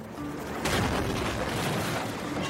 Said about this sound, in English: Don't worry, those aren't real gunshots, nor is there anything to be alarmed about. It's a video game, Battlefield 3, to be precise.